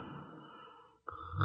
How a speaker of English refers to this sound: Well, how do you like that? She snores, too.